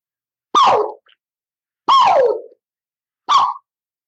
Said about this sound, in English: And I'm going to do a couple of loud, really loud, sharp, quick tones.